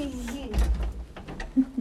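Old-fashioned elevator doors being pulled open by hand on the way to an apartment, a low rumbling slide with a burst of rattling clatter and a few light metallic clicks, while a voice murmurs faintly underneath.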